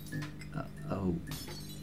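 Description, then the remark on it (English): A glass water jug is knocked over with a sharp clink and clatter, followed by a brief rush of water as the entire jug spills over completed reports, while a voice sounds faintly underneath. “I appear to have spilled an entire jug of water all over your completed reports.”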